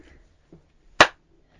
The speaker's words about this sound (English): Thanks for the sarcastic round of applause.